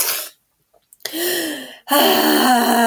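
A wet sniffle, a brief pause, then two drawn-out, wavering sobbing breaths, someone crying with no words spoken.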